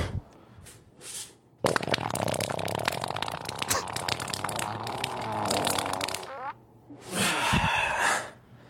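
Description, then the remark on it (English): A long, loud, wet sputtering fart from a played video of a man with a long beard rattles on for several seconds, messy, with a brief breathy gasp before it and a noisy exhale afterward. “He looks like the kind of guy who would just shart like that.”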